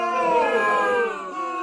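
A short booing sound played from a WAV file, a sustained, moaning vocal tone that holds steady and then sags slightly in pitch before cutting off after about a second and a half, with no talking over it.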